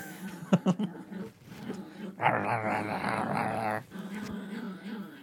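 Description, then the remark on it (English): A dog growls low and then lets out a sustained, rising whine-like growl, with short sharp yips and whimpers at the start; fairly loud, with no one speaking. “This dog's fucking crazy.”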